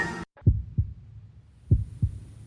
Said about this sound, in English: Oh, that caught me out. The heartbeat started earlier.